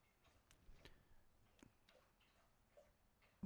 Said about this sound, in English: I fucking hate that sound. There's a dog drinking water behind me.